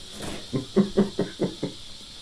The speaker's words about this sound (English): Let's see you tap that keg. This is a beer that we have brewed over only 3 days. So I can't guarantee what it is going to taste like. For the benefits of the tape, that is the release from the keg and not from me.